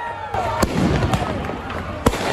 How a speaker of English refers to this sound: Police in the Minneapolis suburb of Brooklyn Center were pelted with fireworks and other projectiles on another night of civil unrest.